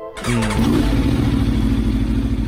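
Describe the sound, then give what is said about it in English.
A loud Aprilia RSV4 motorcycle engine with an aftermarket Akrapovic exhaust fires up and revs, settling into a steady, throaty roar with strong low rumble and no talking. “So this is just an aftermarket exhaust on this motorcycle. But is it the exhaust or is it the Aprilia SVR or SV4? Yep, the RSV4.”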